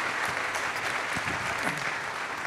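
A room full of people claps steadily, a dense, continuous wash of applause that stays loud and even throughout, with a few faint voices mixed in underneath.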